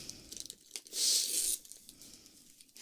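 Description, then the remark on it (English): Crinkling of wrapping paper, then a single loud, half-second rip as a heavily wrapped gift with bows is torn open, followed by a few softer rustles. No one speaks. “I did my best to wrap it. Look, like, it's covered. It's covered. You just used too much paper.”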